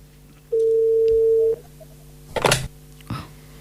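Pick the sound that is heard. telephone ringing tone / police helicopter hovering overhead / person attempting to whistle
telephone ringing tone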